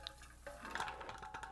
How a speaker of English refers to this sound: Just listen to that ice cold water. Wow, refreshing. Refreshing.